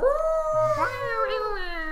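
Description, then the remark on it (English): A person imitates a cat with a long, drawn-out meow, held for about two seconds at a steady pitch that dips slightly near the end. The voice is fairly loud. “Is it a cat?”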